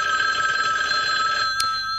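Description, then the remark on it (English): A telephone rings with a steady, high electronic trill that holds unbroken for a couple of seconds, fairly loud, with a brief click just before it ends. “So I got to that stage where the phone then again rings again.”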